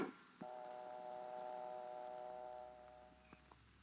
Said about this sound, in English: We know that dial telephones are easy to use. However, mistakes in dialing do occur. Always listen for the dial tone.